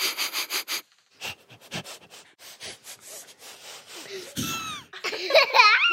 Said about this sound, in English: When we smell something and we would like to see what it is, we actually sniff like a dog.